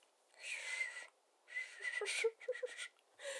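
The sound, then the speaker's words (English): A person whistles two drawn-out, wavering notes with a breathy edge, then adds a few quick short chirps, moderately loud with no talking. “you heard that whistle?”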